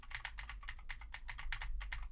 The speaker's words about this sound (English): Now I am typing on a keyboard with Cherry MX Blues to see how much of my voice versus how much of the keyboard it picks up.